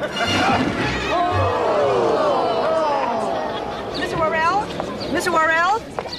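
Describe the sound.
A crowd of fans on Main Street cheers as Ernest's entourage makes its way through. Many overlapping voices shout and cheer in a loud, steady din, with a few high, rising whoops breaking through toward the end.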